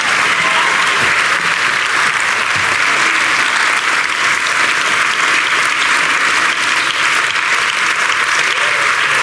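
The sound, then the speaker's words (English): Sustained audience applause welcoming Nicola Sturgeon, SNP leader and First Minister of Scotland, a loud and steady wash of many hands clapping that stays at full strength for the whole stretch, with no voices standing out above it. “Please give a rousing welcome to Nicola Sturgeon.”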